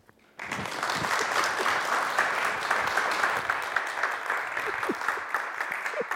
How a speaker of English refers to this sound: Wow, with that applause, I can go home.